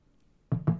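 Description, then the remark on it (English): Two quick gulps of a drink, one right after the other, following a near-silent pause. “I think it's time for another little sip here.”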